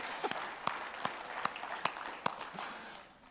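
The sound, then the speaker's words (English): A church audience breaks into a steady wash of applause during a sermon, with sharp individual claps popping out at an even rhythm above the crowd before it gradually fades out. “So that may not be something you want to clap on, but let's just clap in faith.”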